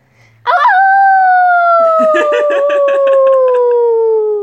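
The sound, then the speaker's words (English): A child's voice lets out a long, loud imitation wolf howl, rising sharply then sliding slowly downward, while a second voice chatters and yips underneath for the last half of the sustained call. “That they understand humans very nicely and wolves are great howlers. Can you howl for us?”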